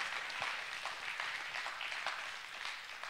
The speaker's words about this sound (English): Come on, okay, that was sad. Let's clap. We're going to clap.